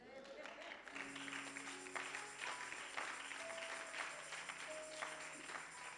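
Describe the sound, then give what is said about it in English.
An audience breaks into sustained, dense clapping after about a second, prompted by the preacher during a sermon, a steady wash of many hands that continues throughout, with held musical tones sounding underneath. “That should accompany some clap.”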